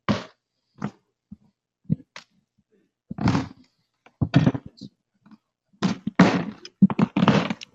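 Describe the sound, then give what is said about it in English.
A water bottle is passed over amid a string of irregular thunks, knocks and rustling handling noises, some sharp and brief, others longer and scraping, with short silent gaps between. “So I failed to bring my water bottle up. Do you mind passing it?”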